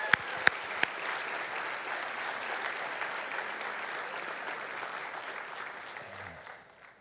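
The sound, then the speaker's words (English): An audience breaks into steady applause welcoming three guests out, a dense wash of clapping with a few sharp louder claps at the start, holding strong for several seconds before gradually tapering off. “And let's just give them a round of applause.”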